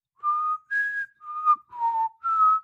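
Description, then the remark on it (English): Someone whistles a short melodic phrase of five clear, sustained notes that shift up and down in pitch, fairly loud, with brief gaps between notes and no talking. “Actually, I'll probably get sued for whistling that.”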